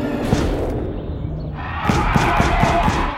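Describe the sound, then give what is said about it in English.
A giant purple chicken foot stomps down repeatedly on the cartoon character Frylock. About five heavy thuds come in a quick, steady rhythm over a loud, noisy background that follows a rumbling stretch at the start. “At the end of the clip, you could hear Frylock getting stomped on repeatedly by this giant chicken foot, this purple chicken foot.”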